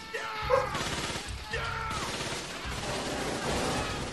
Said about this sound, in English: Guns. Tell ya. There's lots of explosions happening.